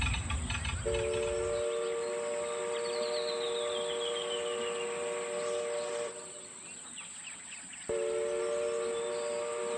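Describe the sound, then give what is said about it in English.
A small amusement park railroad train at Disneyland rumbles along steadily, its whistle sounding in long sustained tones that break off briefly and resume, with clattering mechanical noise throughout and no talking. “If you guys don't mind, I'm going to sit back and I'm going to enjoy this loop, and I'll see you again when we get off at the Main Street train station.”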